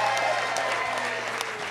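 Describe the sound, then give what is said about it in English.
An audience applauds and cheers in a steady, dense wash of clapping that holds at an even loudness for under two seconds, with a few louder claps standing out. “The crowd's going crazy.”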